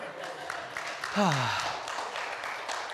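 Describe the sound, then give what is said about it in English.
Steady audience applause, a dense crackle of many hands clapping throughout, with one voice letting out a brief falling whoop partway through. “That is the most applause for the least I've ever done.”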